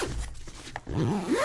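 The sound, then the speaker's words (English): A suitcase zipper is pulled shut in one quick rasping sweep as the packed suitcase is closed, its scratchy tone rising in pitch toward the end, loud and unaccompanied by talk. “You close it.”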